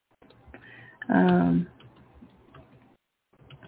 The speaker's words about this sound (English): So I'll just see. Right now I'm typing to him.